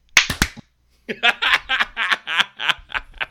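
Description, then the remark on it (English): A few sharp hand claps, made together on a count of three to sync a recording, land unevenly, almost together but not quite, then a short pause gives way to a run of stifled, rhythmic snickering laughter. “We're going to do one, two, three, clap, okay?”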